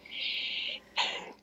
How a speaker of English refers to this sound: Bless you. Do you like those little... Those sneezes.